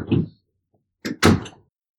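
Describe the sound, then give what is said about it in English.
A door that was not fully closed is handled with a brief rattle as a dog is put out, then after a short pause it's shut with two quick, solid thuds. No one speaks. “No, I guess the door wasn't all the way closed.”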